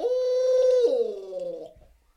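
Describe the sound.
A person imitates an owl call: a steady, loud hooting tone that drops in pitch into a gargled, rolling warble, made by gargling saliva at the back of the throat, then fades out over about two seconds.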